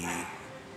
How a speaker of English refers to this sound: Is that a dog? Yes. Sorry, again, we don't have budget for a recording studio. Kaya sa bahay lang kami nag-record, no? So you can hear some neighborhood noises there.